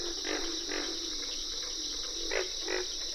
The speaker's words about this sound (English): You can distinguish the treble notes of cricket frogs and the distinctive katuk katuk calls of carpenter frogs. Lang Elliott and Ted Mack recorded this frog concert for the Nature Sound Adventure series, Voices of the Swamp.